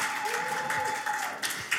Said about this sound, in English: Round of applause to the praise and worship team.